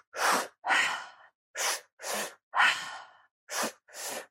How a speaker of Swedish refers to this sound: Och de grundade en andningsteknik där man andas väldigt snabbt. Där man syresätter kroppen väldigt intensivt. Så man andas...